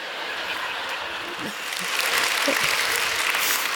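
Steady audience applause, a dense crackle of many hands clapping that swells slightly louder partway through, with a faint murmur of voices underneath.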